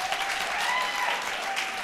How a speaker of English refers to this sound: So first, let's take a poll here by the amount of clapping. If you go commando, clap, please.